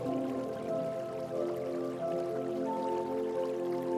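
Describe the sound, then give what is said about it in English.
Cold water runs steadily from a tap over a person's hands, splashing in a continuous, even stream with small gurgles and drips, moderately loud, with no voices. “When the cold water hits your hands, what colour springs to mind?”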